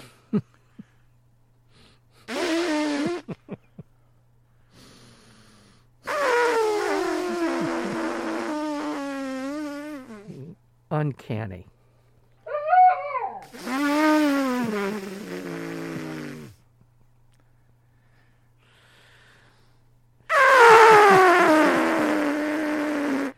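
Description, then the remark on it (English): Human voices imitate an ivory-billed woodpecker with a series of nasal, toy-trumpet-like toots in wavering bursts separated by pauses, fairly loud over a low steady hum. A single word is spoken briefly. “said each member of the team had encounters with the ivory-billed woodpecker and often heard its call, which has been described like hearing a child puff into a tiny trumpet.”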